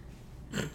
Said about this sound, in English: What is my dog doing? He's sniffing laundry.